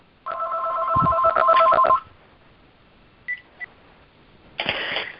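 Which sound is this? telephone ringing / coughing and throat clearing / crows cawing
telephone ringing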